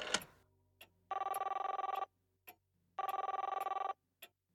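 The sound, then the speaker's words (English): A telephone rings on the line when calling the operator, in two long, buzzing bursts separated by a short pause, with faint clicks around them; clear, with no voices. “I'll call the operator again.”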